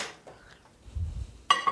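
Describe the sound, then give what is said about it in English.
A low shuffling rumble, then a ceramic bowl of cajeta is set down inside a microwave with a sharp clink and a brief ringing tone, followed by a second lighter knock. “So what we want to do is put the bowl of cajeta in the microwave.”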